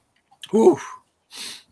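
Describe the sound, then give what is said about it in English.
A single abrupt sneeze with a sharp voiced burst, followed a moment later by a softer breathy exhale or sniff. “Bless you.”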